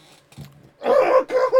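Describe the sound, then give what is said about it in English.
A loud, drawn-out burp with a rough, growly tone, briefly breaking before a final short gurgle, preceded by a faint low rumble. “You have to make your burps exciting on this show.”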